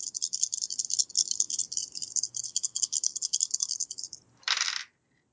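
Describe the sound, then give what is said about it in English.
Dice rolled for a logic attribute check in a tabletop role-playing game rattle rapidly for about four seconds in a steady, bright clatter, then land with a short, sharp burst of noise before going quiet; the roll gives 2 successes. “Go ahead and, roll your logic”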